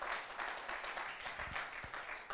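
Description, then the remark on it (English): A crowd claps hands together in a dense, continuous patter of many overlapping claps, steady and moderately loud throughout, with no voices standing out. “Clap your hands if you hear what I'm saying.”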